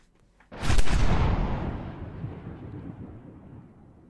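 A single deep cannon boom erupts suddenly and loudly, then rolls away in a long rumbling decay that fades over several seconds, with no voices present.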